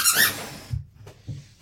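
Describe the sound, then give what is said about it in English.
A dog's squeaky toy lets out a shrill, wavering squeak, then soft low chewing thumps follow before another quick squeak cuts in at the end. “And you might hear squeaking in the background because we have our dog here chewing on his squeaky toy because he loves it so much.”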